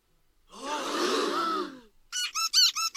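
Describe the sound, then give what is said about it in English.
A long, harsh screech of fingernails dragging down a blackboard to interrupt a meeting, a reference to Quint's blackboard scene in Jaws, followed by four short, shrill squeaky scrapes in quick succession. No one speaks. “And that's supposed to be like a reference to Jaws when the meeting is interrupted by Quint putting his hands on the blackboard.”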